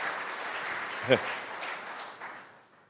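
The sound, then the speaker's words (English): An audience at a Tesla presentation claps after a slide on factory safety improvements, a steady, dense burst of applause that gradually thins and fades out toward the end, with one sharper thump partway through. “You don't have to clap after every slide unless you really want to, but.”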